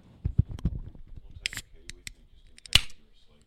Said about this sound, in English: You got to record the opening of a can.